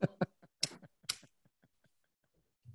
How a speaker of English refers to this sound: Why you eating dog food?